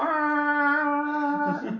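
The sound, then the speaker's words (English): A bagpipe with a bag made from a sheep's stomach warming up: a steady, reedy, buzzing tone held for over a second, then wavering and turning rough and breathy before it cuts off. No one speaks. “So it's this huge air contraption with pipes coming out.”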